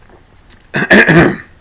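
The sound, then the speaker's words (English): A person coughs, a short hoarse burst of two or three rough, throaty hacks that blur into a throat-clearing sound, with a faint breath just before; their throat is getting dry. “Woo, that was a weird cough.”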